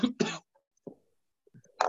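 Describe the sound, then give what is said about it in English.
A man coughs into the microphone over a Zoom call, two sharp bursts in quick succession, then a brief quiet stretch with faint small noises before another cough begins at the end. “As he coughs into the microphone.”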